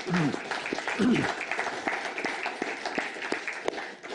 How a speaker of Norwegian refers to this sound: Det er helt, helt fantastisk. Så vi gir deg en god klapp.